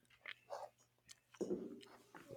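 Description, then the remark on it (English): Wet chewing of a chewy black licorice Twizzler candy, with soft irregular bites and squelchy mouth sounds continuing for a couple of seconds, no talking. “Munch on my shake.”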